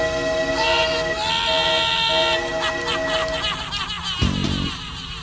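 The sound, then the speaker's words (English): A loud, sustained train horn blares in steady chord-like tones over continuous rumbling wheels, then fades into clattering rolling train noise with a brief deep swoosh near the end. “This is the last stop for the crazy train that we have been calling Smartwatch”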